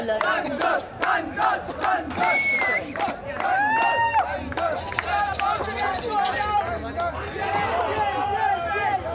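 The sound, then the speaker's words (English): Several voices shout loudly over a busy crowd, overlapping calls rising and falling in pitch as food stall vendors yell to encourage guests to come to their stall and have their food, with steady babble underneath throughout. “So there's yelling going on.”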